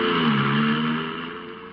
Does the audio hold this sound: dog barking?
no